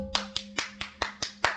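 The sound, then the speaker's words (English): Seven sharp hand claps in a quick, steady rhythm, each a loud, bright smack made right at a microphone, with a low steady hum underneath and no talking. “Clap!”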